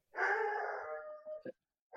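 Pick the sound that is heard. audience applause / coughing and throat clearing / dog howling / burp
dog howling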